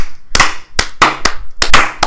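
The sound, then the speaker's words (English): Seven sharp, loud hand claps for the Sagittarius at the start of Sagittarius season, in an uneven rhythm, some landing in quick pairs, with nobody speaking over them. “Clap it up for the Sagittarius.”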